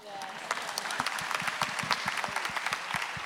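An audience claps steadily, many hands producing a dense, crackling patter of sharp overlapping claps at a fairly even loudness for a few seconds.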